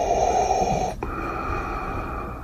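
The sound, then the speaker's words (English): A person imitates Darth Vader's mechanical respirator breathing, a harsh, hissy inhale followed by a long raspy exhale, fairly loud, with no talking. “The breathing takes so long.”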